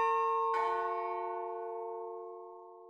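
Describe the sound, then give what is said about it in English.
A deep, resonant doorbell chime of an older house, pushed from outside, rings out, one tone already sounding before a second strike lands, then the rich bell-like tones clang in the foyer, hang and slowly fade. No voices. “It startled all three of us, as their house is older and has a doorbell chime that's reminiscent of an old haunted mansion.”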